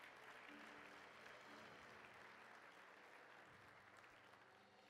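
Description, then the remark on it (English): An audience claps hands steadily for several seconds to bless the Lord, a dense, continuous wash of applause, with a faint low musical hum underneath. “Take some time just to clap your hands and bless the Lord.”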